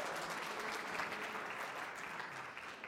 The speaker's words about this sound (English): Yeah, that's right. We should give him a big round of applause.